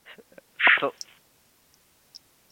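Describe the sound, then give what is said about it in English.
A few sharp, isolated clicks of a pen button, spaced apart and fairly quiet, following a brief burst of vocal noise near the start. “Is pen clicking a form of ASMR?”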